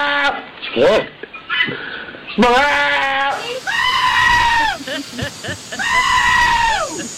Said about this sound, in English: They're cute. I mean, they're pygmy billy goats. They're not full grown. Like yeah, they make sounds like that.